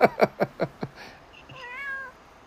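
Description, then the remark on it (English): A cat meows in a quick run of five short, insistent cries, then lets out a longer, rising and falling meow that trails off. No one speaks. “Now, even your cat disagrees.”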